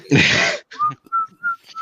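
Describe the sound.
A breathy burst of noise, then a person whistles a short melody of three or four steady notes, moderately loud, with brief pauses between them and no talking.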